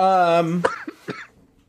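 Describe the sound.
A short voiced sound gives way to a few quick coughs, about three sharp bursts in a row, fairly loud and fading into quiet at the end.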